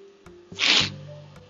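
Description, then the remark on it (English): A single sharp sneeze from allergies bursts out loudly with a hissy rush of air, then fades. A low steady hum and faint clicks continue in the background; no one speaks. “I've been like freaking sneezing and not coughing, but I feel like my allergy is just overboard today.”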